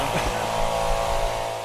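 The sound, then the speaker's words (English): A host of leaf blowers run with a steady, droning engine whine throughout, a continuous buzzing motor with a broad noisy hiss and no pauses. “we were descended upon by a host of leaf blowers.”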